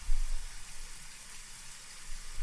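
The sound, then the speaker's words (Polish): Steady rain falls throughout, a dense, even hiss of drops spread across the whole scene, moderately loud with a faint low rumble underneath and no voices. “Ale popatrz na nas wszystkich, chociaż ten deszcz, żeby przeczekać.”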